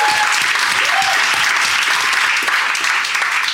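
Steady audience applause, a dense wash of many hands clapping at a constant loud level from start to finish, with no voices standing out.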